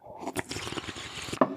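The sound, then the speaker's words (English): A wet, noisy slurp of a drink, a hissing sucking sound lasting over a second and ending in a sharper, louder gulp-like burst. “First slurp of the show, I think.”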